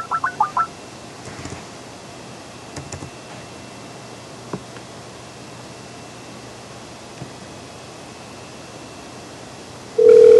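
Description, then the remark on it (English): A quick burst of several short dialing beeps as a phone number is called, then a long stretch of faint hiss with a few soft clicks, before a steady ringing tone begins at the end. No one speaks. “Is this ringing?”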